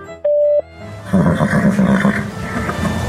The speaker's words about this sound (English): You have reached the Horse Radio Network voicemail line. Please leave your voicemail after the tone.